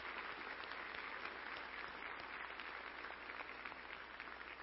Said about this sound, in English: And this weekend we remember men and women who have risen to the greatest occasion possible, the defense of our freedom right here in the United States of America. Let's give those men and women a round of applause.